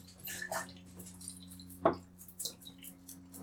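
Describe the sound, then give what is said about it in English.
Film developer being poured into a developing tank: soft gurgles and splashes come in uneven bursts, with one sharper knock partway through, over a steady low hum. “And I will now add the developer. Excellent. Adding the developer.”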